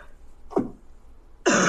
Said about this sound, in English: I have been struggling with this cough for like 2 weeks. Sorry that you guys had to hear that.